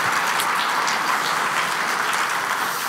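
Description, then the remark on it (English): An audience claps steadily for a presenter, dense overlapping hand claps forming a continuous wash of applause at moderate volume, with no one speaking. “Can I get a round of applause for Shannon?”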